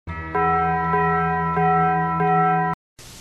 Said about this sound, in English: See ya at the bell. Bong. I'm going to add that sound.